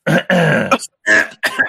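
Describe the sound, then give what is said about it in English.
A loud series of rough coughs and throat-clearing bursts into a microphone, four in quick succession, with short gaps between them and no speech. “People cough when they're on the microphone. So annoying.”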